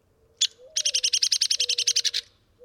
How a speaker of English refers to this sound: We home in on a ladder-backed woodpecker making sharp peak calls. Sounds much like the calls of hairy woodpeckers back home. As luck would have it, the woodpecker suddenly gives a loud sputter.